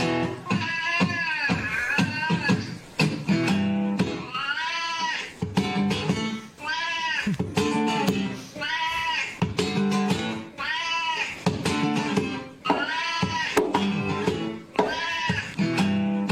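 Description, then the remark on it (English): A cat singing the blues yowls in long, wavering, tuneful meows, one drawn-out call after another in a steady back-and-forth call-and-response pattern, loud and continuous for the whole stretch with no talking. “So there's some kitty audio that's making the rounds. This cat sings the blues.”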